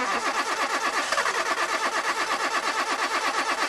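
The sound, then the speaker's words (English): A car engine cranks with a steady, rapid chugging rhythm, fairly loud, churning on for several seconds without any voices. “Want to stop engine problems before they start?”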